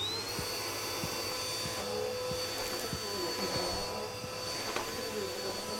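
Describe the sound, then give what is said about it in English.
A vacuum cleaner vacuuming up spilled popcorn runs steadily, a loud continuous whine with a high-pitched tone and rumbling motor, with faint bumps and knocks as it is pushed around. “I'll vacuum it up for you.”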